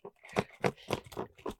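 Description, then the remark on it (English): A pencil case shaken like maracas: about five quick rhythmic bursts of rattling and crinkling, bright and fairly loud, with no voices over it. “Why are you maracaing it?”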